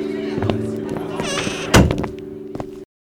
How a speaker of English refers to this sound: Door close.